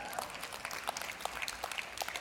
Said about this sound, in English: That's a weak clap.